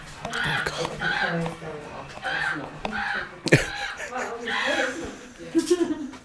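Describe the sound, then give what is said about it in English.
A motion-triggered mechanical raven prop with a sensor at the front caws in a rapid run of harsh, raspy squawks that repeat for several seconds, loud, with a sharp click partway through and voices mingling underneath. “Don't set off the raven.”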